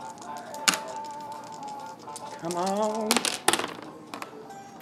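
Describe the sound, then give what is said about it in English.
Two green dice clatter across a tabletop: a sharp knock early on, then a quick burst of several hard clicks as they tumble and settle, with a voice speaking briefly over them. “So then you're just rolling two green dice.”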